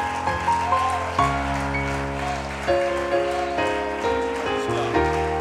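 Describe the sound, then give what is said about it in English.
A church audience claps steadily on a Wednesday night, giving the Lord a hand clap before being seated: a dense crackling wash of hands over sustained organ-like chords that shift every second or so, with no voices standing out. “Let's give the Lord a mighty hand clap before we're seated.”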